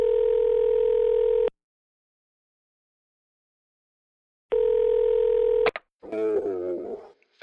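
A steady electronic telephone tone sounds in two long bursts separated by a few seconds of silence, then cuts off as a voice begins talking over the line, in a recorded phone call made earlier that day.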